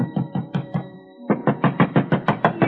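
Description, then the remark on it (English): Heavy fist pounding on a man's door in Danbury, a fast steady series of loud thuds, a brief pause, then another insistent burst of blows. No one speaks. “But ringing his bell and pounding on his door got me nothing.”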